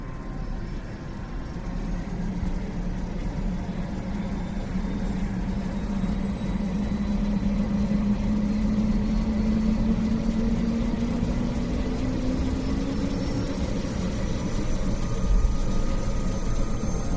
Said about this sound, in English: The helicopter takes off from the granite helipad, swaying slightly.